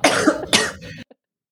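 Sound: coughing fit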